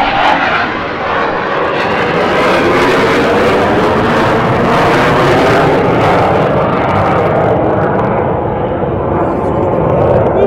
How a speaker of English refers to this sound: F-86. You know, I've been waiting for that. It's been too quiet. Yeah. What's a daily without some jet noise or something flying by?